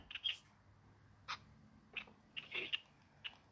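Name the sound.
birds chirping outside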